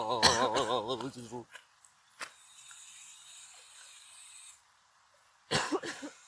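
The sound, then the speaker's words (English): A few short, harsh coughs break out, separated by a stretch of faint hiss, with a wavering voiced sound just before the first one. “So now I feel worse about, like, coughing.”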